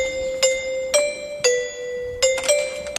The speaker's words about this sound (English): And then he rang a doorbell, and the doorbell was God Save the Queen.